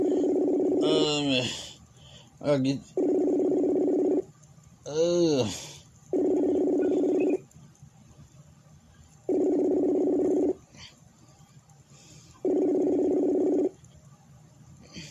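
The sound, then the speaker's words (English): A phone call rings out: four steady, loud ringback tones, each about a second long with regular pauses. Brief voice-like sounds occur between the first rings. “Pick up the phone.”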